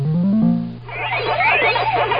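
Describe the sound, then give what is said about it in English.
Sound effects from the arcade video game Donkey Kong: a stepped, rising electronic jingle of harmonic tones, then a busy burst of warbling, chirping synthesized bleeps sweeping up and down over a steady low buzz. “Sound 14 was Donkey Kong.”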